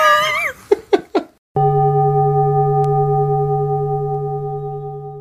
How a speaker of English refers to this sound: Ah, the gong.